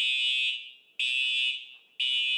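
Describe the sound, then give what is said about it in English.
A school fire alarm rings in loud, harsh bursts, each starting abruptly about once a second and fading slightly before the next begins. No one speaks. “Everybody goes outside when we hear the fire alarm.”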